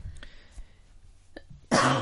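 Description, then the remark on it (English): A sudden, loud, harsh cough erupts at the end, preceded by a quiet stretch with a couple of faint, brief throat sounds. “Yeah, that's why I'm nodding and saying, like, don't talk while I'm coughing.”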